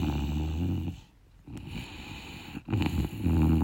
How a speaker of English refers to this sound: Right now I got two snoring bulldogs. Actually, they're snoring pretty softly. I don't know if you can hear.